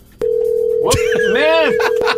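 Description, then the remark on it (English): A steady telephone dial tone hums after a sharp click as a telephone number is dialed to call someone, while a voice speaks over it. Another faint click comes near the end. “All right, let's call her.”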